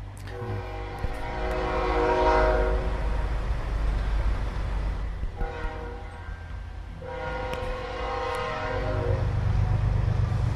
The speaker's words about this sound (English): Oh, shit. There's our fucking Gary train. Fuck you, Gary train.